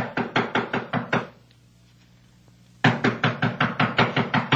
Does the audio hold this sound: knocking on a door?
yes